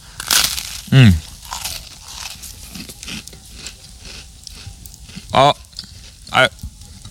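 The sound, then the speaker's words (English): Chomping while eating: a few loud crunchy bites, each with a grunting, squeal-like vocal edge, separated by stretches of quieter crackly chewing noise. “I'm gonna let you listen to my chomping.”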